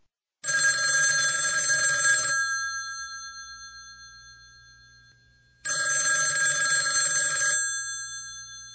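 An old-style telephone bell rings twice, each ring a loud, rattling trill about two seconds long with a slowly fading hum between them and a long pause before the second ring.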